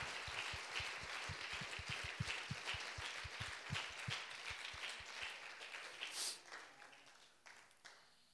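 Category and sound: crowd, audience applauding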